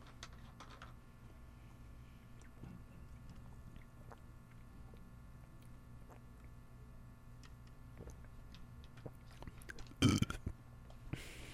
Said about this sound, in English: Should I burp into the mic?